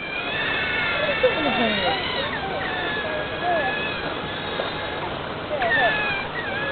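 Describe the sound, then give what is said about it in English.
Asian sea otters calling with a steady stream of high, squeaky chirps and whining squeals that rise and fall, overlapping one another against a constant wash of watery background noise. “He made the sounds of a Tauntaun by manipulating the vocal stylings of an Asian sea otter.”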